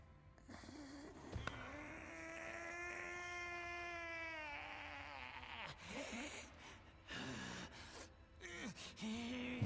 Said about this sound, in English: You are in the mines of Moria, doors of Durin. Here you are going through here. He's like, I'm gonna find that Baggins is. And he gets to a door, pushing against the door. Door's not opening. Making all your Gollum grunty noises.